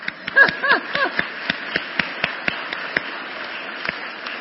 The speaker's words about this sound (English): You can clap.